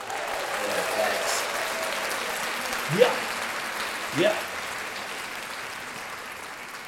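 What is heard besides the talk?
hands clapping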